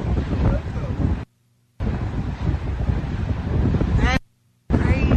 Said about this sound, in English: Here is an audio. It's a video, really, but you can't see it on the radio, probably, of some people taking a video of it and suddenly realizing what it is. Bro, it's a tornado out here.